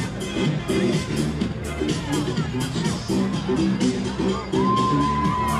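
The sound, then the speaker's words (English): A lively outdoor crowd of marathon spectators cheers and whoops steadily for a runner late in the race, with overlapping shouts and voices filling the scene, the noise swelling slightly toward the end as a whistle-like tone rises. It is 75 degrees with sun breaking through clouds. “All right, we got another runner. We got another very late in the race runner. The crowd is getting hyped.”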